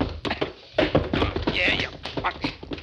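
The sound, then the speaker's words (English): A scuffle ending in heavy thuds as a gunman is knocked to the floor along with his gun, with clattering impacts and grunting voices, all over a few busy seconds. “Oh, then you go on the floor with it.”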